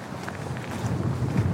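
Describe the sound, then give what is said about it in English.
Steady cold wind gusts buffet the microphone outdoors as the sun is almost down, a low rumbling roar that holds for the whole moment, with what may be faint footsteps shuffling underneath. “It is windy and cold.”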